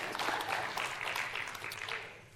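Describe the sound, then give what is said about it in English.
Scattered audience applause, a dense crackle of many hands clapping at a steady, moderate level for a couple of seconds before thinning slightly toward the end. “Take the scattered applause.”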